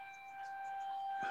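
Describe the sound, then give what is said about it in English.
The monthly emergency broadcast system siren holds a steady, unbroken tone with a bright, buzzy edge, sounding continuously and fairly loud with no voices over it. “It's just our monthly emergency broadcast system.”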